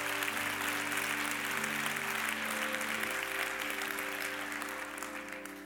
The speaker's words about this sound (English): Somebody say amen. Come on, that's a reason for us to clap and say amen. Please, don't be embarrassed.